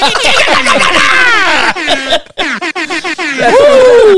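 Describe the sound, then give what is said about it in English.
A new super air horn from a DJ: loud, blaring DJ-style blasts in layered, pitch-bending tones, breaking into a stuttering run of short honks before a final downward-sliding wail. “That air horn gets me hyped.”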